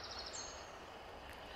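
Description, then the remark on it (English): Faint birdsong drifts through a quiet, ancient UK woodland in spring, with a few high chirps early on over a steady, airy background hush. “This month, spring begins in earnest, and our ancient woodland begins to turn green and white, humming with energy, sparkling with birdsong.”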